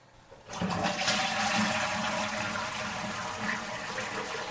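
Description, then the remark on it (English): Water suddenly bursts out of a burst pipe and gushes loudly and steadily, a full rushing roar that keeps pouring without letting up. No one speaks. “Water, there's a leak. It's a burst pipe.”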